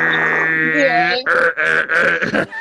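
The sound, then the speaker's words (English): A voice mimics an old dial-up internet modem connecting, like signing on to AOL: a droning, buzzy tone that bends in pitch, then four harsh, hissing bursts in a choppy rhythm, loud. “Like back when AOL, when you would sign on that sound like 30.”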